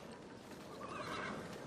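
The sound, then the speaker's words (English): A horse whinnies in a high, wavering call, with the busy clip-clop of hooves on a hard surface running underneath throughout. “We need all these horses shod.”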